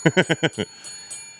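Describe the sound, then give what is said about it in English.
A voice rapidly imitates a ringing bell with five quick, loud 'ding' sounds in a steady rhythm, marking a correct guess of North America in a continent-guessing game, followed by a brief quiet stretch with faint background noise. “North America? Ding, ding, ding, ding, ding, ding. Dinger bell.”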